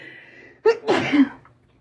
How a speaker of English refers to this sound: I had to sneeze real bad. I'm gonna sneeze again.